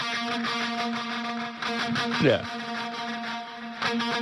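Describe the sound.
A distorted rock guitar riff rings out with long sustained notes and a swooping pitch bend midway, with real reverb from being recorded in a stadium, while a voice briefly speaks over it.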